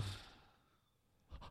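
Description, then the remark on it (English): A soft, breathy exhale like fogging up glass fades out at the start, followed by a second airy breath near the end, quiet with no talking. “It's like. Like you're breathing on glass to write something. Yeah, you're doing a sexy breath.”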